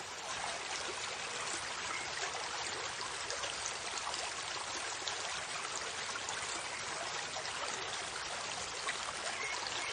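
A river of clear, clean water flows steadily with a continuous, bright rushing and babbling, even in volume throughout, with no voices.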